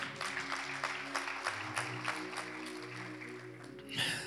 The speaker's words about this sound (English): You can clap for that.